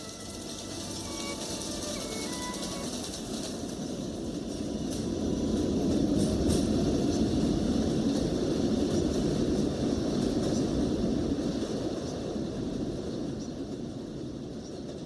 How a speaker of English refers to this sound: On the lower level of the train station, the loud chattering of the train gobbles up the faint notes with a roar.